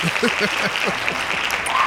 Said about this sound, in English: And before we say anything else, give me the claps. Give me the hand claps.